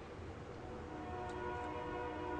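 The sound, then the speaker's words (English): A passing train sounds its whistle in one long, steady tone over a low rumble of rolling wheels, fairly faint, with no one talking. “That's funny, because I can hear the whistle, and there's a train going by where I live, too.”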